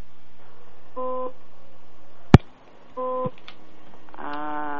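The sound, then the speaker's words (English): Short electronic tones beep in a car-like hum, two brief two-tone bursts about two seconds apart, a sharp click or thump between them, then a longer sustained beeping at the end. “What's that beeping?”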